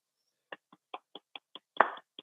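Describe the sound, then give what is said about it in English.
A short run of about ten crisp hand claps from one person clapping in congratulation, at a steady, fairly quick pace, with one louder, fuller clap near the end. No one speaks. “I'm clapping.”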